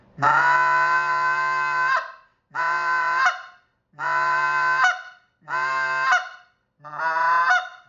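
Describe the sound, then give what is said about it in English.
A goose call blown loud: five long, reedy honks in a steady rhythm with short pauses between, the last one breaking slightly. No voices. “So once that's going to get you onto the honk and cluck, and we've talked about that.”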